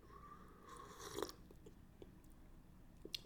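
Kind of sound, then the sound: food or drink, sipping coffee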